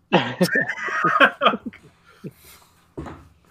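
A fairly loud run of coughs in a rapid cluster, tapering into a few scattered hacks before one last cough near the end, with no talking.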